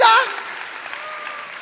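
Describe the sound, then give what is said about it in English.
An audience claps for a guest in a steady, crackling wash of applause that carries on evenly after a brief loud vocal burst at the very start. “Clap for ….”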